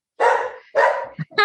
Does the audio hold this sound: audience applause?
no